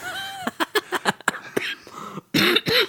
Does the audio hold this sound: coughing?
yes